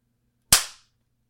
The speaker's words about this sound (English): Or do we want to do the clap thing first? Yeah, let's do the clap thing at the beginning this time.